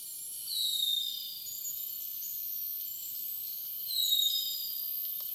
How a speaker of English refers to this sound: Just to start us off, we're going to just let you hear what a harpy eagle sounds right from the get-go, people. And here it comes.